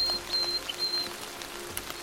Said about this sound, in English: But what we will notice most of all is the sound of the raindrops falling from the leaves, birds, and other small bits of magic.